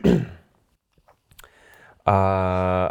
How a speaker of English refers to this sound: Excuse me, I'm just going to clear my throat.